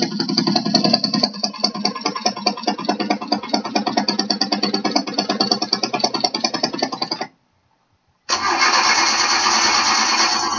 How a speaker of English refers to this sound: Her car is wiped out. It's sputtering. Will she make it? It's sputtering even more heavily now.